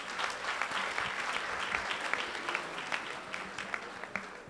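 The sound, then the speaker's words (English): A crowd applauds steadily, with many hands clapping at once in a dense, bright patter that holds at an even level throughout, without talk on top. “Why are they clapping?”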